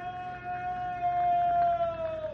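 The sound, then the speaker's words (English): A single long, sustained scream from among rocks beyond a fire area holds one steady, piercing pitch that sags slowly lower over about two seconds, wavering slightly like a howl, with no voices speaking over it. “There it is again. It was a scream.”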